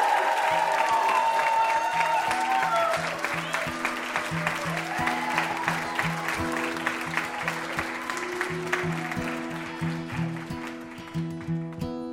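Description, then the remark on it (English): An audience claps steadily and densely throughout, a continuous crackle of applause for guest Paul Feig, layered over a band playing an upbeat tune with a bass line, both fading slightly toward the end. “How about another round of applause for our VIP, Paul Feig?”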